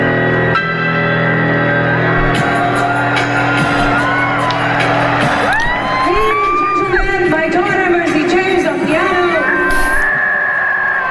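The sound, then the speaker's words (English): A dense concert crowd cheers loudly at a tour concert on a Wednesday night while piano is played on stage. One fan lets out repeated high, rising screams and whoops over a sustained musical tone. “It's me screaming.”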